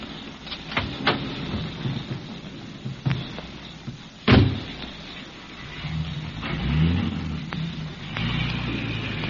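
A car door slams shut with a single heavy thud, then the engine rumbles and revs up, a low growl that swells and settles, with a few small clicks beforehand.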